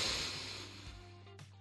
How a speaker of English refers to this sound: In at number 4, you need to meditate and breathe. Just breathe. Meditation has been scientifically proven to reduce stress levels by calming the nervous system. So, meditate.